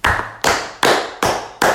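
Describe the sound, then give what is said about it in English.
Five loud, sharp hand claps at a steady, unhurried pace, each a crisp smack with a short fading tail, with no voices. “Ali, have you got some hand cream? I've got the clap.”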